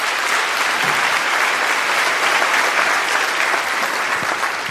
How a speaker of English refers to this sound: So listen, yeah, that's worth clapping for.